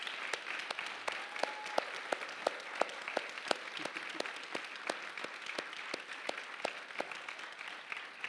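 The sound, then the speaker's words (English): A church audience applauds steadily for several seconds, many hands clapping in a dense, even patter with a few sharper individual claps standing out, and no one speaking. “So would you just, it's sort of silly, but yeah, let's just clap.”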